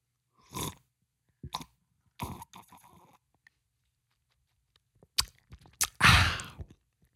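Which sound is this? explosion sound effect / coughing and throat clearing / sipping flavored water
sipping flavored water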